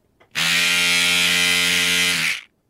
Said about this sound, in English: I'm going to go toothbrush. You're locking in toothbrush. Locking in toothbrush. Are you sure? I'll give you one chance to change. No, I'm going to go with the toothbrush. You've done it